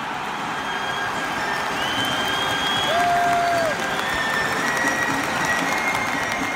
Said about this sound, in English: and the accompanying roar from the crowd, has become part of the club's identity.